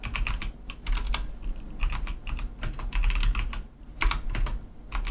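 Rapid, busy computer keyboard typing and mouse clicking with crisp clicks, fairly loud, continuing steadily for several seconds over a low background hum, with no voices.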